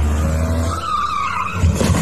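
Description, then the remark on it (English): A car backs out quickly, ending up in a small tree; the engine revs hard as tires squeal and skid in a brief, loud burst, followed by a low thump near the end. No one speaks. “In a short clip from the upcoming episode, the Predator gets so frazzled when confronted, he hops in his car and tries to speed away. And then this happens. He backs out quickly.”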